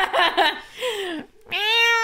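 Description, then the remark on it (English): A foster cat meows, a few drawn-out, fairly loud cries with falling and rising pitch, following a brief choppy vocal burst, with no talking. “It's my foster cat.”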